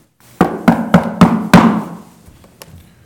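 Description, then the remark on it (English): Five firm knuckle knocks on a wooden door in a steady, even rhythm, resonant, followed by a brief quiet pause and one faint tap. “My knuckles are bare from knocking on your door.”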